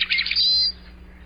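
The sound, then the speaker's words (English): A single rusty blackbird call: a squeaky, creaking burst of high notes ending in a thin, drawn-out whistle, clear over a faint low hum. “It's today's featured feathered friend, presented by Birdwatching Magazine.”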